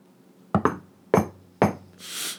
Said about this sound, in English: I hear it again. I race into my bedroom and lock myself in. I wait and I listen, but the knocking stops.